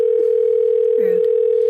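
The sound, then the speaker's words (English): A steady, unbroken telephone dial tone hums loudly throughout, with a couple of faint brief sounds passing underneath it. “So, without further ado, should we get a gentleman on the phone? Definitely a gentleman on the phone, sure.”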